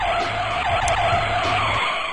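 A loud, continuous screech of car brakes and skidding tires lasting about two seconds, with a harsh, sustained squeal and rumbling engine noise underneath, with no talking.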